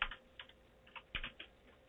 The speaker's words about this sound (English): He's there. I can hear him typing.